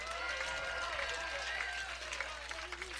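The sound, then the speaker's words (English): A crowd applauds steadily for a few seconds when asked who is excited to get back to football and for Saturday's game. Dense clapping is mixed with cheers and excited voices, sustained at an even loudness throughout. “Just by maybe applause, who's excited to get back to football and who's excited for Saturday?”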